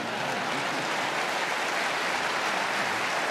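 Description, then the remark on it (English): A meeting audience applauds steadily, a dense wash of many hands clapping at once with no pauses, holding an even, moderate loudness throughout with no voices. “No need to applaud.”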